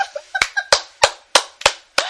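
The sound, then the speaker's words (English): Steady hand clapping, about seven sharp claps at an even pace over two seconds, with a faint laugh-like sound near the start. “We applaud you, even though you are a frigging heretic.”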